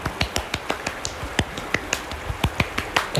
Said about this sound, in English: Big round of applause. Here, I like to do a cheesy, literally, clap in a circle.